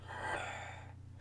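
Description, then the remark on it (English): A voice imitates a single heavy, gasping breath, a long breathy rasp lasting under a second before trailing off, over a faint steady low hum. “And then we hear someone else gasping. Well, breathing heavy.”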